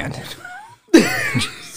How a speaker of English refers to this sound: Jesus Christ. What the fuck was that? One of those alligator sneezes.